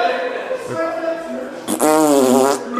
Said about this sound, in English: They're asking each other, is this guy for real? Is he in pain? Fake farts in the bathroom. It's a laugh and you just keep escalating it. Just keep pumping.